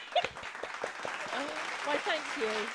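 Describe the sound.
A short burst of clapping from a small group, brisk and close, with voices and cheers mixed in over the top.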